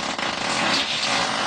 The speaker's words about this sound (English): Was that starting a chainsaw? No, that's coming out my ass. That's coming out of my asshole.